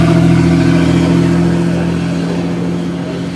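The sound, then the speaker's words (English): A jet flying near an airbase roars by with a steady, droning low hum and broad rushing noise, loud at first and slowly fading over a few seconds, with no voices. “Every time it's a jet, and it's a fucking UFO.”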